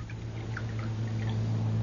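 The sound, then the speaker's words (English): Coffee trickles into a cup in a light, splashy pour, with faint droplet sounds over a steady low hum. No one speaks. “I'll pour the coffee.”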